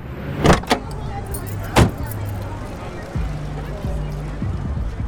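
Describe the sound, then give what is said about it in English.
Muffled party bass thumps behind closed doors, heard from outside while walking up to the party, a low, dull rumble pulsing in a steady rhythm, with a few sharp knocks or clicks early on. “So when I first heard JT describe walking up outside and hearing the doors rumble, I just really wanted to create that feeling of possibility.”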